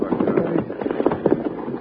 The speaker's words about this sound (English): Ooh-wee. The whole building just come to pieces. Well, that's the end of Jingles Cafe, Charlie. Sure is. That blast must have busted every coffee cup on the shelf and every egg in the icebox.